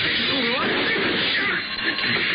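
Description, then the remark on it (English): A loud, sustained crash of a plate glass window shattering, broken with a bottle: a dense burst of smashing and tinkling that stays heavy for a couple of seconds, with faint voices buried underneath. “Ever break a plate glass window? Well, I did.”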